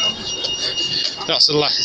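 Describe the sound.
High-pitched electronic beeping from a pedestrian road crossing signal on a street in Manchester sounds steadily through busy outdoor street noise, with voices murmuring.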